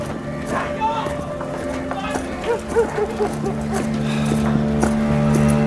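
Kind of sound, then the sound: animal, horse hooves clip-clopping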